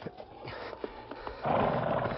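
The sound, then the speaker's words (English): A few spaced hoof clops of a roan horse at a hitch rack thud along, then a louder, rough horse whinny rises and holds for the last second, with no one talking. “And there's a good-looking roan at the hitch rack.”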